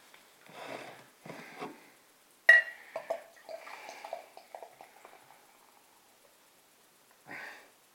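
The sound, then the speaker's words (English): A sharp glassy clink as a bottle cap comes off, then a 5.1% beer gurgles and splashes into a beveled glass for a few seconds before trailing off, with soft breathy rushes before and after the pour. “Let's get this out into my glass.”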